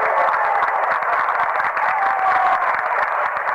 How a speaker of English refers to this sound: Sun fans applauding the defensive efforts of their team.